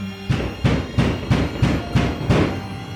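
Loud, heavy knocking on a door by kids demanding to be let in, seven forceful thuds in a steady, fairly quick rhythm, each one booming and low. No voices are heard.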